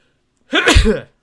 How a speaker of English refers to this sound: I'll just sneeze. Okay. I won't even bother muting it.